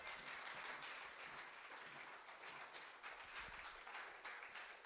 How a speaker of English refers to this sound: My future is in God's hands. Glory, give him a hand clap of praise.